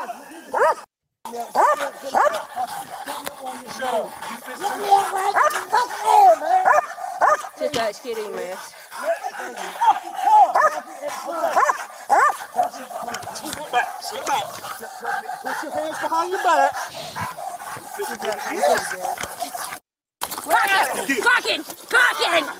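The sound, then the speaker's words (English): A police dog barks and yelps repeatedly as it bites a suspect who is fighting police officers, its sharp cries mixed with shouting voices and scuffling, fairly loud and continuous throughout. “Now the dog bites.”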